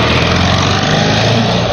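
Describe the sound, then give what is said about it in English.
A small engine runs loud and steady for under two seconds with a buzzing, rattly drone, like a scooter revving; no one speaks. “come back on your scooter.”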